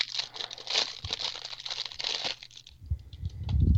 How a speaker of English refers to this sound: And there's the crackling wrapper.